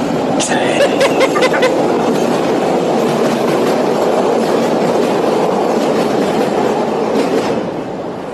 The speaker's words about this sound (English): hold on, this train going by.